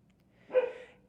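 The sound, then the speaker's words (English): The speaker's dog lets out one short, somewhat muffled bark that rises quickly and fades within half a second, heard alone against a quiet background. “It's my dog.”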